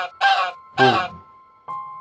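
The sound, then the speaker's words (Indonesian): Two loud, harsh honking calls from something in flight come in quick succession, like an agitated duck but somewhat different, followed by a shorter, softer honk, with a faint steady hum underneath. “Bunyi itik tapi dia punya sound dia different sikit.”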